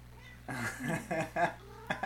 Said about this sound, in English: I'm being assaulted right now. We got a cat in the studio. An attack by a wild cat. Wild cat. He's the mascot of our show.